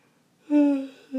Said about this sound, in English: Excuse my yawn. Ooh. I swear, I'm not tired.